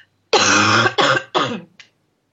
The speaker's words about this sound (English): So, sorry, I'm going to cough.